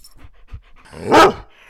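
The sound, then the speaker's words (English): A dog named Oliver pants softly in short breaths, then lets out a single loud, harmonic bark, with no one speaking. “I currently live with my fiance Lauren and our dog Oliver. Oliver, say hi.”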